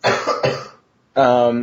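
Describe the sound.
Two loud, close coughs in quick succession right into the microphone, followed after a short pause by a throaty, voiced rasp.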